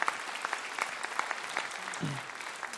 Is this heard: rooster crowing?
no